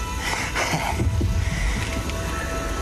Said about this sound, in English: I can hear your heartbeat.